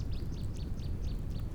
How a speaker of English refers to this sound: As the male nightingales began to sing and their song began to resonate throughout the woodland, the sound was simply magical.